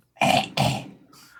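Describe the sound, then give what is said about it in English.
A sudden, forceful sneeze comes in two sharp, loud bursts, the second trailing off into a softer breathy exhale. Nobody talks during it. “Bless you.”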